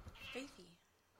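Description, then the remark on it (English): A single short meow from a 12-year-old female cat, fairly faint, rising briefly and then sliding down in pitch before fading out, with no other sounds around it. “We're going to have to get rid of this cat.”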